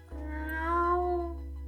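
A single drawn-out meow from a headquarters cat, clear, rising in pitch then sliding back down over about a second and a half, with a steady low hum underneath.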